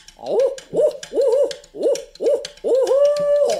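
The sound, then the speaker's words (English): A person loudly imitates an owl, calling five quick, rhythmic hoots that rise and fall, then finishing with one long, drawn-out hoot. The call is clear with no talking. “You are a very effective owl hooter.”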